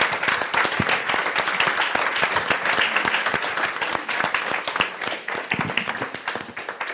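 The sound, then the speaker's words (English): An audience applauds the panelists after a panel discussion, many hands clapping at once in a dense, crackling wash that holds at an even level for several seconds with no voices. “So please join me and give a warm round of applause to our panelists.”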